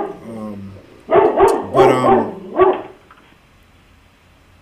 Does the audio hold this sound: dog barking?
yes